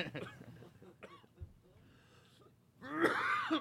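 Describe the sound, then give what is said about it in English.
A person who is smoking coughs raspily with wheezy, strained breaths: a few rough bursts early, a quieter wheezing stretch, then a louder harsh fit of coughs near the end. “You're smoking and coughing.”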